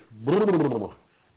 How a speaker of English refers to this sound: That was out of nowhere. Real nice. Yawn my head off, why don't I?